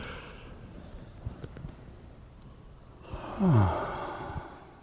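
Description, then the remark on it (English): After a few quiet seconds, a single big yawn comes in: a long, breathy inhale that slides into a soft, falling voiced groan before tapering off. No one speaks. “And then a nice big yawn. Let your mouth open really wide.”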